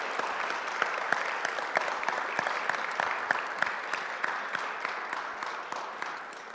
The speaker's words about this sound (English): Can you all please give a round of applause for all the people that shared and testified?